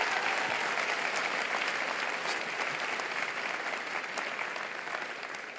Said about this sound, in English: Give his son a huge round of applause.